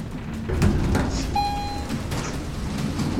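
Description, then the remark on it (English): A door slides open with a low mechanical rumble, a brief high squeal ringing out partway through, set against a steady background hum. No one speaks. “They could shoot us as soon as the door opens.”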